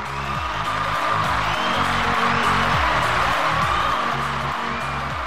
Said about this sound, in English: that's just a small collection of people I keep trapped under my desk just to applaud you.